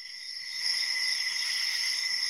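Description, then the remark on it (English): A steady, continuous chorus of crickets chirping, a high shimmering trill at an even level throughout, with no voices and nothing else in the background. “Crickets. You did the cricket sound effects.”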